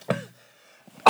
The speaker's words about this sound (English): stop with the coughing.